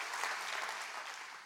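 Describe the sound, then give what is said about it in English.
A church audience claps their hands together, a dense, steady burst of applause from many people at a fairly even level before tapering slightly at the end. “Come on, clap your hands and say amen to that.”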